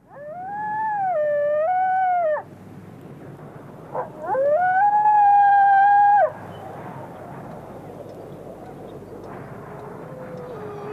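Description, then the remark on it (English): A wolf howls twice, each a sustained, tonal wail of about two seconds, the first gently rising and dipping, the second steadier and louder, with a short pause between and faint hiss behind. “Okay, well, let's hear a sound that hasn't been heard in the wild in Ireland since 1786.”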